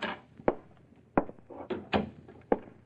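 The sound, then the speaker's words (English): A frosted glass office door with faded gilt lettering, belonging to the office of private investigator Zach Chambers, being opened: a handful of sharp knocks and latch clunks at uneven intervals, with a faint rattle in between and no voices. “Faded gilt lettering on a frosted glass door tells you who Lucille was calling on this time.”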